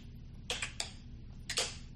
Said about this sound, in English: Hey, let's see if we can do a slow clap on our clap. I'm into standing ovation here.